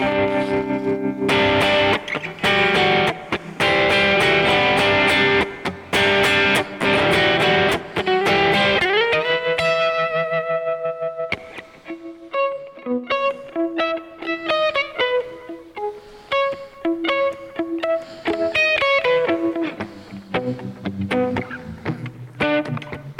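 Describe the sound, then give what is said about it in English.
Loud distorted electric guitar rapidly chopped on and off by an effects pedal set with every knob at noon, in a fast stuttering rhythm, then easing into cleaner, melodic single notes with no one talking. “But you can hear that chopping.”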